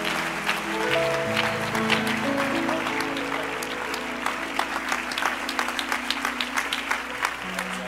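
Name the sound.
audience applauding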